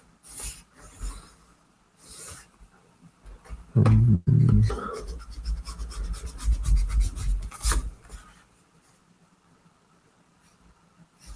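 Scratching and rubbing of a pen or pencil on paper as someone draws, by hand, a cereal box for a new cereal called Rock, Scissors, Paper. The strokes are irregular, grow busier and louder midway, then fade to quiet scribbles.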